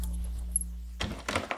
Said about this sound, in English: Keys in the door.